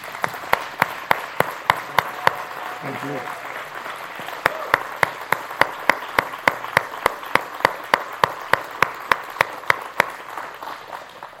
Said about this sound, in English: Y'all give him a hand clap.